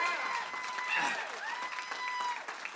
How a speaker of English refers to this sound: For all of you in the room, if you're a mom, can we just give a strong hand clap to all of the moms in the house today?